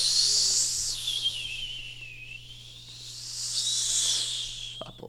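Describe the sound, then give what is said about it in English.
Howling winter storm wind, a continuous high, whistling whine that slowly dips and rises again in pitch, with a faint hiss underneath and no voices. “Sounds like a winter storm.”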